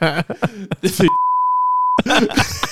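A steady, pure censor beep tone lasting nearly a second cuts sharply through animated talking, with voices resuming right after it ends.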